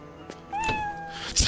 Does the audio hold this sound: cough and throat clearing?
no